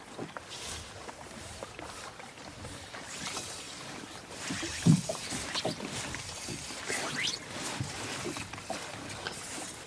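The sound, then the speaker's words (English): A small boat moves steadily across a sheltered loch during a fishing trip, with a continuous wash of splashing and lapping and a few brief chirps or calls rising above the noise. “Right, we're going to turn the boat around in a minute.”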